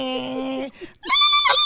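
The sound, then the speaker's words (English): A voice imitates the failing transmission of a 1995 Geo Metro two-door hatchback: a steady low droning hum that breaks off, followed by a short gurgle and then a loud, high, strained whine. “That's the transmission messing up.”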